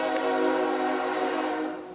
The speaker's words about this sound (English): The only train tonight.